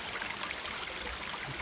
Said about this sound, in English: Just sheltering under some trees here that are bordering this little brook. So this water must flow from the Holy Well.